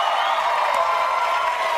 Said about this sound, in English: They cheer every time I stand up.